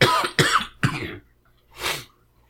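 Three quick, harsh coughs in close succession, followed after a brief pause by a softer, breathy cough or throat-clearing, from a person who has been sick for a few days with a cough and sniffles, with no talking.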